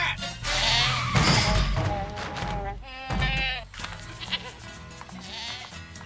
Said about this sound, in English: Yeah. Is that a goat?